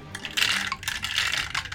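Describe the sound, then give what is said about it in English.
A handful of dice rattles and tumbles across a hard tabletop, producing a dense flurry of quick clicks and clacks that continue for a couple of seconds with no voices. “That was a lot of dice.”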